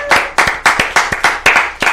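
Loud, steady clapping in an even rhythm, about eight sharp claps in two seconds, with a bright hiss ringing between them, welcoming a special guest rapper. No clear cheering voices stand out.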